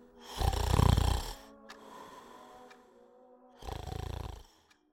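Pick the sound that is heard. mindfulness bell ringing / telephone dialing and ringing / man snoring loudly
man snoring loudly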